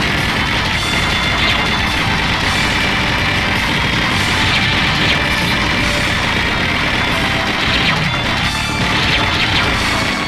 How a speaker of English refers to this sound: Here's one more unlistenable clip of constant gunfire.